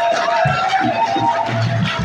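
A church audience claps their hands for the Lord, a dense continuous patter of many hands blending with cheers and crowd noise at a steady, loud level.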